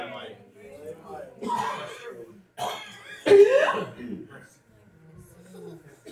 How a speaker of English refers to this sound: Sometimes you just want to cough, don't you?